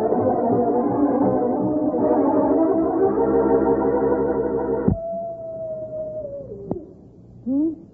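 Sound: wolves howling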